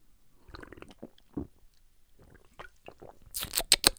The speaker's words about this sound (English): I'm going to drink some of this, Rain Energy Body Fuel, Razzleberry, very good.